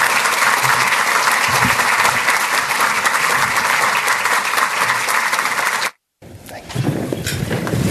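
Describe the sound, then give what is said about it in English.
A crowd applauds people as they come forward, with steady, dense clapping for about six seconds, then it cuts off abruptly into a brief silence before a lower rumbling noise takes over. “Please give them a round of applause as they come forward.”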